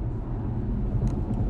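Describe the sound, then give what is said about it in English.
A car engine roars with a heavy, continuous low rumble and road noise as the car speeds up past two trucks, loud and holding steady for the whole moment with no one speaking. “I don't know if you heard that, but I done fucking sped up like a crazy bitch.”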